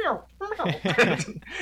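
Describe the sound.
A person vocally imitates the mewing of baby alligators just after they hatch from their eggs, producing a short series of high, wavering, squeaky chirps with sliding pitch, fairly loud.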